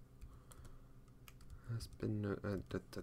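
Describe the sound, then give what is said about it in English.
Rapid, uneven clicking of keys on a computer keyboard, fairly quiet, followed by a person starting to talk as the typing fades under the voice. “This is a lot of typing to do on the fly.”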